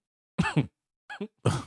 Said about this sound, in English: I'm sorry. That was a cough. I was trying to stifle a cough.